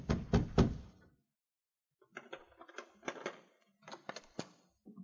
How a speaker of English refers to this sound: A few moments later, the sergeant knocked on Baird's door.